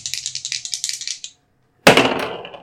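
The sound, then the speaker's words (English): Dice rattle quickly and rhythmically as they're shaken for two attack rolls in a tabletop game, then after a brief pause clatter loudly onto a hard surface and settle with a fading scatter of clicks, with no voices. “That's a 19 and a 14. The 19 hits. All right. That's the wrong dice.”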